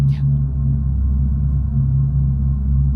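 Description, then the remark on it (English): An Audi e-tron GT electric car idling, giving off a steady, low synthetic hum with layered droning tones that holds unchanged for the whole stretch, preceded by a brief faint high chirp at the start. “If you're in the car just idling, this is what it sounds like.”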